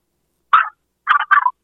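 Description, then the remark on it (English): A dog barks three times, one sharp bark followed after a pause by a quick pair, fairly high-pitched and loud against silence, with no talking. “Oh, I forgot you got a dog.”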